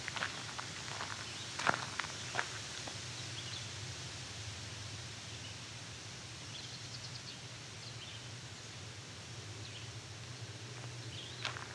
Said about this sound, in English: Yes, we have a blue-headed vireo and a raven.